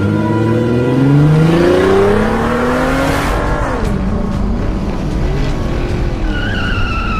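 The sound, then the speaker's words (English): The Batmobile's engine revs loudly as its booster rockets are switched on, its pitch climbing steeply, then it roars away at speed with a hint of squealing tires, the motor's whine lingering as it continues accelerating. “With the flick of a switch, he turned on the Batmobile's booster rockets and took off.”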